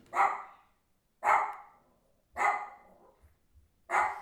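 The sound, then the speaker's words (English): A puppy barks four times in sharp, evenly spaced yaps about a second apart, with a slightly longer pause before the last one. No one talks, and it is quiet between barks. “here is my puppy Macy Jane barking in the background”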